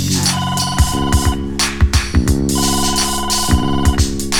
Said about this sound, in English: Then all I do is push number two, let the phone ring, and then I ask for you.